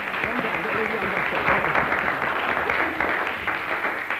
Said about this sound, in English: Give him another clap. Come on.